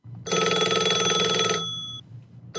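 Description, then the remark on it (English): A single loud telephone bell rings for just over a second, a bright metallic jangle that cuts off and leaves a short ringing tail, with no voices. “What's happening to me? Is it puberty? It's a phone call, dingus.”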